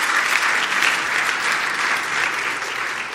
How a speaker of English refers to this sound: Could you give them a warm round of applause this morning? Welcome them.